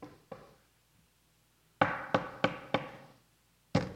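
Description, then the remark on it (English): Sharp knocking, like banging on a door: two light taps, a pause, then four hard knocks in quick, even succession and one last loud knock. No voices. “She's literally would bang on my door and keep screaming my name until I came to the door.”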